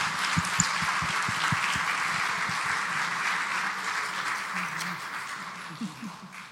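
A church audience applauds steadily for several seconds after a prayer, a dense wash of many hands clapping at once, even in loudness before thinning slightly at the end.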